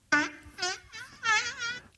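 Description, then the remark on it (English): A cartoonish fart sound effect from a soundboard: four buzzy, wobbling blasts in quick succession, loud and rasping with a bright, reedy edge, and no voices over it. “So this is the fart one.”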